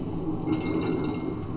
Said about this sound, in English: But we can throw the dice.